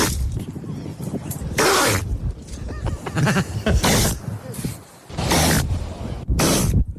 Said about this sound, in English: That is what it sounds like when a baby seal sneezes. It's so cute.